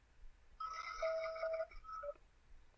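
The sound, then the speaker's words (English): A quiz game contestant's buzzer, played for everyone at home, sounds once: a bright, electronic, harmonic-rich tone lasting about a second and a half, with a brief pitch shift near its end, heard alone without any talking. “And let's, for everyone at home, let's hear Chris's buzzer.”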